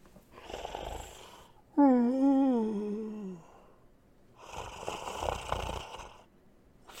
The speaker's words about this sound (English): So I listened to the sound of Grover snoring and gazed out of the train windows as the dark fields of Ohio raced by.